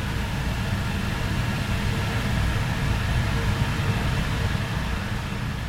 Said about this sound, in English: we have server rooms that keep all of our computers in one place and all of our data, scientific data, and also just video data, all in one place. And the server room has a specific sort of computer noise to it. It's like a hum.